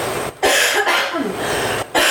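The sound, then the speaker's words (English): A loud fit of harsh, raspy coughing, a couple of rough bursts broken by brief pauses, with no talking. “Because I have to cough.”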